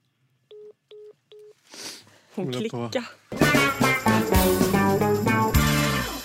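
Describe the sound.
Three short, evenly spaced telephone keypad tones beep in quick succession as someone dials Dramaten, followed by a breath and then people talking loudly.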